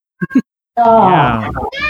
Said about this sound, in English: You said stop, and then that cat straight up just said no.